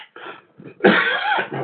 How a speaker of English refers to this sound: Excuse me, I think I'm getting sick, so excuse my coughing.